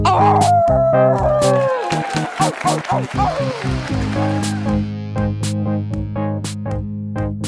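A wolf lets out a long, falling howl at the start, followed by several shorter yelping cries over a steady low droning background.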